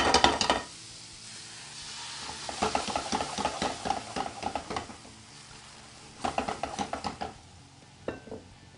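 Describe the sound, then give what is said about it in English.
A full cup of raspberries caramelizes with sugar in a pan for a duck sauce, sizzling softly while a utensil stirs in scraping, clicking bursts, with a quieter simmer between strokes and a brief clink near the end. No one speaks. “You start to see as I mix this around here, what we're trying to do is we're trying to get these raspberries to caramelize with the sugar.”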